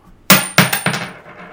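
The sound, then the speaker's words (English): A coin flipped to decide between pirates (heads) and ranchers (tails) lands on a hard surface and bounces several times in quick succession, each impact giving a bright metallic clink with a high ringing tone that fades away; it lands tails. No one speaks. “Don't flip it because we haven't decided who's what yet. Pirates are heads, ranchers are tails.”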